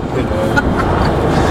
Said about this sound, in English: Oh, the traffic.